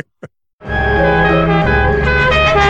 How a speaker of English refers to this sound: And one of the things she does throughout the episode whenever she's driving is she's constantly honking the horn, and there's this little three-note honk.